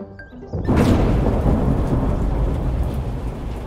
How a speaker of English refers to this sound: Oh, it's stormy. We'll have to cancel our picnic.